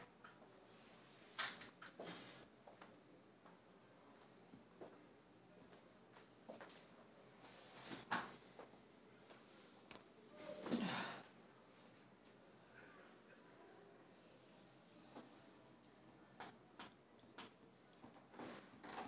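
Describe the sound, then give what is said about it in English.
Someone changing his chair, shifting it around: a few scattered knocks and clunks, then a longer scrape around the middle, fairly faint, with no one talking. “Someone changed his chair.”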